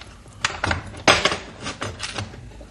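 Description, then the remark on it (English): Metallic clanks and rattles, a padlock being unlocked and the heavy steel-lined rear door of a truck clunking open, several sharp knocks spread over a few seconds with no talking. “Now, plain, ordinary door with the padlock. We unlock it.”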